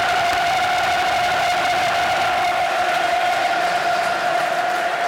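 crowd applause and cheering

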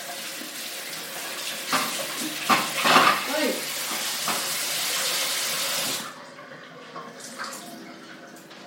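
tap running

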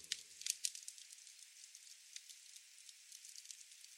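crackling campfire

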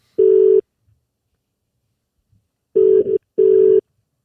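telephone call ringing tone

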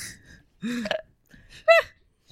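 burp

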